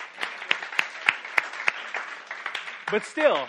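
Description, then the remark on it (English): A short burst of audience applause, a steady patter of many hands with a few sharp, evenly spaced louder claps standing out, fading as a voice begins speaking at the end. “I think we should all clap for that one.”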